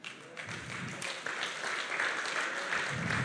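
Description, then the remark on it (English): An audience claps together in a steady, dense burst of applause that holds at an even, fairly loud level throughout, with no voices rising above it. “That does deserve a clap.”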